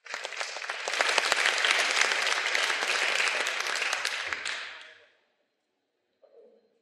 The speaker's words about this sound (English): You know, so please give everyone a round of applause. Thank you, folks.